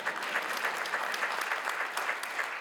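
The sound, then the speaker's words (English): A crowd claps steadily, a dense patter of many hands with a faint rhythmic pulse running through it, sustained at an even loudness with no talking. “Come on and clap your hands for that.”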